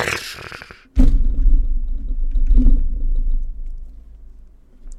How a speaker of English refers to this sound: Thunder, thunder, thunder.